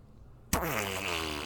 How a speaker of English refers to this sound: Fart. Nailed it.